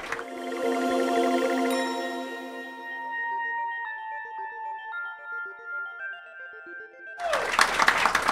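A burst of applause breaks out near the end, loud and dense, after a stretch of sustained electronic tones that step slowly between pitches; no one speaks.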